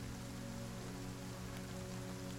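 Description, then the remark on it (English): Heavy rain pours down on a boat at sea in a steady, unbroken hiss of fine drops, with a faint low hum underneath and no voices. “I'll look at her for a long second as the rain pours.”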